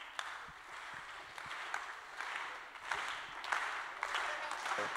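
An audience gives a slow clap welcome as a speaker comes up, clapping together in a slow, uneven rhythm, with sharp louder claps standing out every half second or so over a steady wash of scattered clapping. No one speaks.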